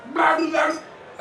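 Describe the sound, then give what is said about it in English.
Two loud dog barks in quick succession, each drawn out and throaty, followed by a brief quiet tail. “How come you get propositioned and I get barked at?”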